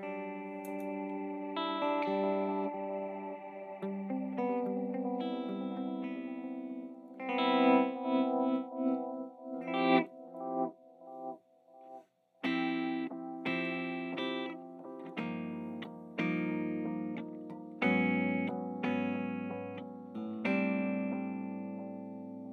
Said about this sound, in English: And of course, you know, you got your delay sounds.